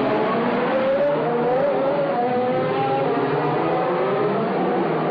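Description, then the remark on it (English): Race car engines roar past on a track in Monaco during practice three, heard from about 20 feet away, a loud continuous drone whose pitch climbs and sweeps as cars go by, with no voices. “The cars are definitely noisier.”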